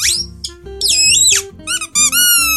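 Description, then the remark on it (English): A squeaky rubber burger-shaped dog toy squeezed repeatedly, giving a run of shrill, wavering squeaks in quick bursts, some short and chirpy, others drawn out and bending in pitch. “I'll have the squeaky chips, seeing as Dave's got a squeaky burger.”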